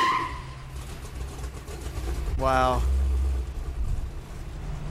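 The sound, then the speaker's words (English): A car roars past with a steady engine rumble and a brief tire screech midway, while a man's voice exclaims over the noise. “Look at that car.”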